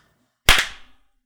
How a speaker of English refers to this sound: Now we're going to do it again, but clap. So, one, two, three.